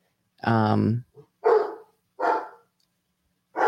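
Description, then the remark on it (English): A dog barks four times at uneven intervals, loud, the first bark drawn out and tonal, the others shorter and rougher, with quiet pauses between. “Let's see what this idiot's barking at.”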